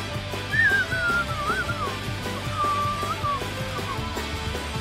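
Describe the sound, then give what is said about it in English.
Someone tries to whistle a tune, producing a thin, wavering, unsteady melody that slides up and down in pitch, heard faintly over steady background music. “Fuck you, I can't whistle.”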